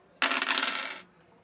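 Percentile dice clatter and rattle across a hard tabletop in a quick burst of sharp clicks lasting under a second, then settle into quiet. No one speaks.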